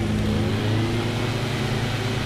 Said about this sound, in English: That's the blower, huh?